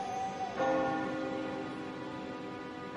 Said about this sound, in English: The town clock chimed midnight, and the distant bells made Thomas feel very sleepy.